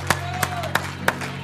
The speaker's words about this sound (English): Come on, give the Lord a hand clap of praise today. Hallelujah.